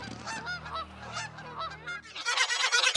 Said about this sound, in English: A flock of swans took off honking and sharting over the lawns.